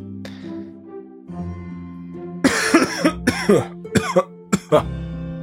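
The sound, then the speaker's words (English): A person breaks into a loud coughing fit, a rapid series of harsh hacking coughs and throat-clearing bursts after a brief quieter moment. “Apparently I am after I cough my head off.”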